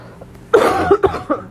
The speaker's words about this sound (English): Hold on, I have to cough again.